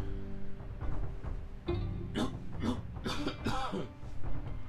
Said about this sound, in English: See, there's that cough I was talking about earlier.